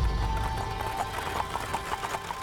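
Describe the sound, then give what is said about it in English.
Steady clip-clop of horse hooves at an even trot, the rhythmic clatter riding over a low rumbling undertone as a horse-drawn wagon rolls along Wall Street, New York City, coming to a stop opposite the J.P. Morgan building on September 16th. No voices. “On September 16th, a horse-drawn wagon bounced along New York City's Wall Street, coming to a stop opposite the J.P. Morgan building.”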